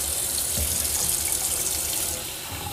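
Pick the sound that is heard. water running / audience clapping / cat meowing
water running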